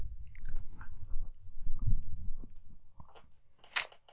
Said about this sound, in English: Make a sip of water.